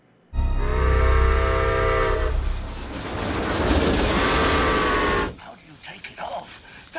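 In a video of a child playing with his toy trains, a toy train named The Economy blows its whistle loudly, a long sustained toot followed by a rattling, rumbling stretch and a second shorter whistle, then it cuts to quiet background noise.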